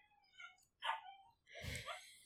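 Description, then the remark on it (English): A dog named Munster whimpers in thin, high whines, then gives a short yip and a fuller, louder bark, all fairly quiet with no talking. “Dog.”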